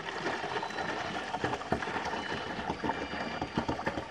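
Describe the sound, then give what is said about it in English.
Water is poured back again into a bowl during a paper-towel demonstration for children, a steady several-second pour with a continuous splashing, gurgling rush and small bright spatters and splashes throughout, fairly loud and steady, with no voices. “I will use that one. I will pour it back again.”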